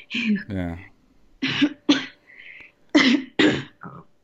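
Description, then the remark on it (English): A run of harsh coughs comes in quick pairs, about five bursts in all, after a brief throaty vocal sound at the start, with short quiet gaps between them. “I'm like scared to cough when I go to the grocery store now.”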